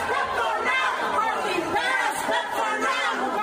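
A crowd of protesters screaming and chanting at full volume inside Kevin McCarthy's office, which they stormed, many overlapping raised voices merging into a loud, continuous roar without a break.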